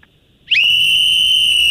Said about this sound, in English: Whistles, so I decided before I call you, I'd get my own whistle.